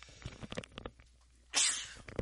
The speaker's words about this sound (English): Also, too, excuse me, I'm going to sneeze, and I never sneeze usually. I think I'm going to.